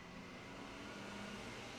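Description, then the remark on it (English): A heavy truck rumbles past outside a house on a residential street, a steady low engine drone with broad road noise that holds evenly throughout, with no one talking. “put some grease on that fucking truck.”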